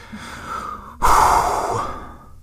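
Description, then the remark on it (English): A single deep breath, the fifth in a row: a steady, airy inhale, a brief pause, then a louder, rushing exhale that slowly fades away. No talking. “I got that 5th breath, and it's like my grandmama always said, the 5th breath is the most important one.”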